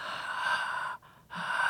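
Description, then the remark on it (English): A person mimics their own open-mouth snoring: two long, breathy, raspy breaths split by a brief pause, fairly loud, with no talking. “What do you snore like? Are you a honk chew or a honk? No, none. I'm like this.”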